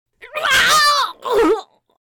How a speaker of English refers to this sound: The creature lunges with a howling snarl, and Crowley goes down with a choked scream.